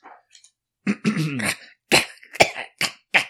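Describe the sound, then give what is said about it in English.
Someone coughing up water after scrambling back onto a boat from the water: a longer, sputtering hack followed by four short, sharp coughs in quick, uneven succession, fairly loud with nothing else around them. “Just coughing up water.”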